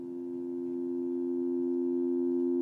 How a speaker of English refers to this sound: Sounds like a dial tone. Actually good though.